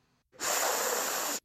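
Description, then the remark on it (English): A single intense sniff, a loud, sustained airy inhale lasting about a second with a sharp start and abrupt stop, heard alone with no talking. “That's a sniff noise. An intense sniff, actually, to be 100%.”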